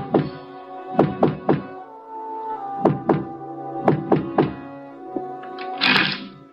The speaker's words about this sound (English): And then we came to a door, and Eiling knocked.